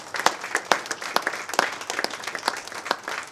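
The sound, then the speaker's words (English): An audience claps hands in dense, sustained applause as praise to the Lord one morning, many overlapping sharp claps forming a steady crackling wash with a few louder individual claps standing out. “Let's give our Lord a hand clap of praise this morning.”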